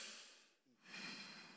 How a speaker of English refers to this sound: In this conference, if the anointing of the breathing of the Lord comes upon you, everybody taking a deep breath.